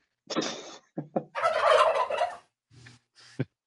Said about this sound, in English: Damn. I'm going to hear turkeys all every episode till Thanksgiving, folks.